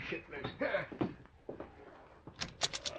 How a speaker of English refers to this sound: Now, hold on a minute while I answer the door.